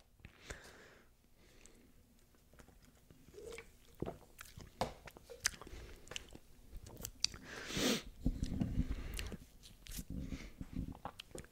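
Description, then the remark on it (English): Someone bites into and chews a crisp sour green apple, with sharp wet crunches and irregular chewing, plus a louder juicy bite partway through and occasional small sniffs. “And for the audio, no, I'm not sniffling, crying. I'm legitimately, this sour green apple.”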